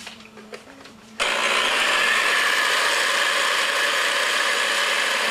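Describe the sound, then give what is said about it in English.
An electric mixer kicks on abruptly after a second of quiet with faint clicks. It beats eggs and sugar on high speed until creamy, with a loud, steady whirring drone and a slight metallic whine, and no one talking. “I'm gonna go over to my mixer now and beat my eggs.”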